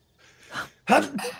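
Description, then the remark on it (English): A rising, breathy intake swells for about half a second, then breaks into one sharp, forceful sneeze with a short trailing breath afterward. “Bless you,”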